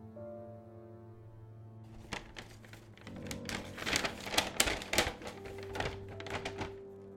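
Paper crinkles and tears in a burst of crackly rustling over a low steady hum, as a paper covering is pulled off a brown book; it grows busier and louder for several seconds.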